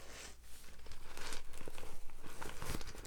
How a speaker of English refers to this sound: And by the way, as I'm shuffling through these runes,